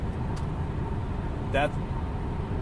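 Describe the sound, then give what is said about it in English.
Steady, droning road rumble from inside a car cruising at highway speed on an interstate in the passing lane, constant throughout, with a brief voiced sound cutting in near the middle. “Driving in a car and doing a podcast is kind of interesting because I'm trying to get ahead of this person who just got on the interstate and decided to match my speed while I was in the passing lane.”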